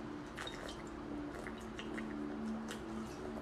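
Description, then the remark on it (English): Someone drinking water, with wet sips and soft gulping, squelchy mouth sounds repeating unevenly over a steady low hum, no talking. “Just drinking some of that water you can't get.”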